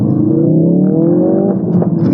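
A Ford Focus RS engine accelerates hard, its rising harmonic whine climbing steadily before a brief shift-like dip and pop near the end, loud with no talking.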